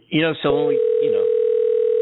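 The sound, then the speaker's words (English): A steady, unbroken telephone ringback tone hums at moderate loudness for well over a second, with voices talking over its start before it continues alone; the call goes unanswered. “They're not going to pick up the phone from radio show.”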